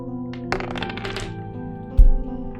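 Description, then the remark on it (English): Dice rolled in a game, on an odd or even result deciding whether an alarm goes off: a quick flurry of sharp, clattering clicks, like dice tumbling across a surface for under a second, then a dull low thud, all over a steady electrical hum. “But now I'm gonna roll...”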